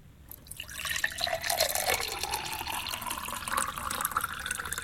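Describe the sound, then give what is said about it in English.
Liquid pours steadily into a glass for several seconds, a continuous splashing whose pitch rises gradually as the vessel fills. The liquid is poured to the brim for a perfect meniscus in a pouring game on The Dave Berry Breakfast Show, Absolute Radio. No voices. “Commence pouring, please”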